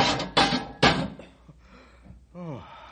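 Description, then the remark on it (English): A metal cage door is slammed shut on a captured 12-foot animal with a loud clang, followed by two more heavy rattling bangs and a brief ringing, then a short vocal exclamation near the end. “Release the pole and we'll slam the cage door.”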